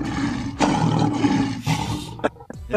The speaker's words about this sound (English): No. That's the lion right there, man.